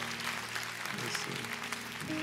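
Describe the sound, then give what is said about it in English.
An audience claps together as praise to the Lord in a dense, steady wash of many hands, sustained and fairly loud, with a low organ-like tone humming underneath. “Hey, give the Lord a hand clap of praise.”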